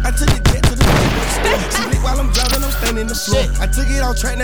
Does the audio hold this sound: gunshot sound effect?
yes